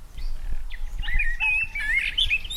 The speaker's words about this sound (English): It's a lovely sound, isn't it? I'll play that for you again. I could listen to that all day long. Birds singing to each other in the mornings. Lovely, isn't it?